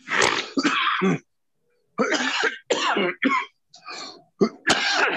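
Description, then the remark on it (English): A person coughs hard and repeatedly, a harsh rasping fit broken by a short pause, then a run of several more rough coughs and throat-clearing bursts. “You cough my connection out, man.”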